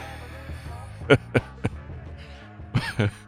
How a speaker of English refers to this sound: I just opened with a yawn.